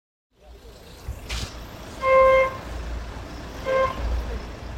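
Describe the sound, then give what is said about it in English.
Street traffic outside one of Dezhou's biggest hospitals rumbles steadily, with two car horn honks, the first a longer blast and the second shorter, rising above the low engine noise. “This is outside one of Dezhou's biggest hospitals, where we saw an elderly woman being lifted down out of an ambulance.”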